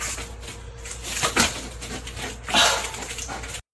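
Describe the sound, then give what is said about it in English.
A dog playing goalie against a foam hockey puck whimpers and whines in a few short, strained bursts over a steady noisy background, played back from a video. No one speaks. “The dog made two saves with his mouth on a foam puck.”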